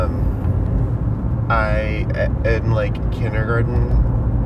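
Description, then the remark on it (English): Steady low engine and road rumble fills the cabin of a moving car, and partway through a person starts talking over the constant drone. “It's so hot in this car.”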